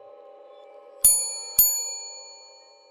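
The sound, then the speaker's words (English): A hotel front desk bell in a small lobby is tapped twice by hand in quick succession, each strike giving a bright, clear ring that lingers and fades over a low, steady background hum. “The toll of the desk bell rings across the small lobby”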